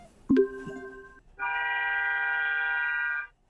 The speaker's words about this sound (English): Just letting the honking go.